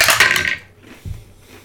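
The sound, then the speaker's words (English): Dice being rolled clatter and rattle in a bright, dense burst for about half a second, fading out, followed by a single softer, low thud a moment later; the roll comes up a 20. “Get these dice out of here.”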